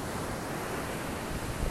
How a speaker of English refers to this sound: Coming to you live from the beach. The dog is in the water, the ocean. It's not too bad today.